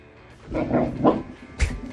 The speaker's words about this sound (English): The owner's trying to get a nap in here, right? Trying to sleep. The dog's like, I want to go for a walk. The dog's having none of it. And he's growling.